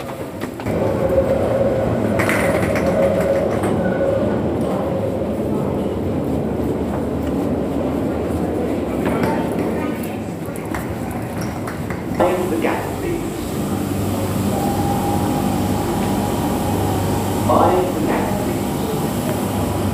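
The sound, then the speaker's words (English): An underground metro train leaving rumbles steadily for the whole stretch, a loud low roar with occasional squeals and clanks, while indistinct voices murmur in the background. “There's actually a train leaving about now.”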